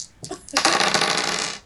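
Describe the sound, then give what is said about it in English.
Three dice, including a d20, tumble onto a hard tabletop as players roll to see who rolls highest, making a busy rattle of clicks that lasts about a second before settling, with no one speaking. “I have 3 dice in my hand, but I'm ignoring all of them except the d20.”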